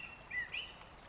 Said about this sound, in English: You can hear birds quietly singing.